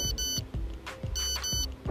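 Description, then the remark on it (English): The old Nokia SMS message tone: a bright, high electronic melody of short beeping notes in two quick bursts, a pause, then two more, over a low background rumble. “And this SMS tone?”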